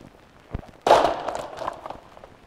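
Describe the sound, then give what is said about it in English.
A chair topples over: a soft knock, then a sudden loud wooden crash that rings out briefly, followed by a few smaller clattering bumps as it settles. No one speaks. “I have knocked over the chair.”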